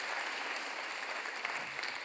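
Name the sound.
audience applause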